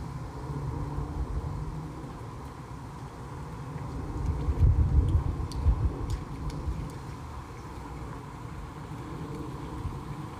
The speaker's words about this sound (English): You can hear the airplane above, life around me.